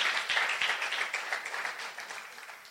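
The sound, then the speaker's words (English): A church crowd claps together as a clap offering to the Lord, in a dense, sustained burst of applause, many hands blending into a steady wash of sound that gradually softens toward the end. “Come on, let's give the Lord a good clap offering.”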